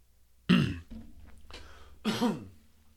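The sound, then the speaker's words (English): Two sharp, throaty coughs, about a second and a half apart, each a loud burst that fades quickly over a low, steady background hum. “You have to cough sometimes in a podcast.”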